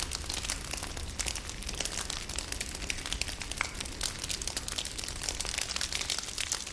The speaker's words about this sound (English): A fireplace is always pleasant.